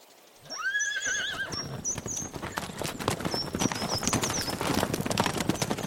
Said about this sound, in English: Is the carriage and horses reset? Yes, madam. I shall return.